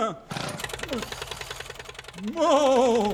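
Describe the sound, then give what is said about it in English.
A small outboard motor, just gone over by Woody Paul with a paperclip and a pen knife, sputters to life and settles into a fast, even putt-putt rhythm, steady; a voice then rises loudly over the engine near the end. “Using nothing more than a paperclip and a pen knife, Woody Paul quickly goes over the small outboard motor.”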